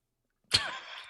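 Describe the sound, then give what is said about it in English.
A single quick sip of water, starting abruptly after a moment of silence and trailing into a soft, hissy slurp. No one speaks. “Just taking a sip of my water.”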